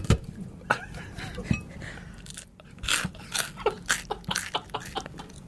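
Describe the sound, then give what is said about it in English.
Someone bites into a stale crouton and chews, giving a run of sharp, dry crunches that quicken toward the end, with a faint low hum underneath. “I couldn't tell from the crunch sound.”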